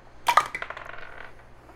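Dice clatter across a hard tabletop, a sharp initial knock followed by a quick series of small clicks and rattles that fade out over about a second, with no talking.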